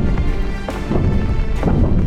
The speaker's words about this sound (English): Her fears were confirmed when she heard pounding against the stone portal into the labyrinth. It shook the earth, louder and louder.